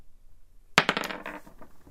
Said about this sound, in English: Right, you're going to roll the little dice. D12.